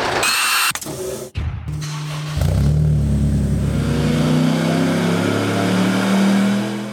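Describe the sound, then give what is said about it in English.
A quad-rotor rotary engine in a full tube-frame, four-wheel-drive car revs loudly, with a few sharp blips before a sustained rev that climbs steadily in pitch. No one speaks. “It's a full tube frame build with a quad rotor engine, and to top things off, it's also four-wheel drive.”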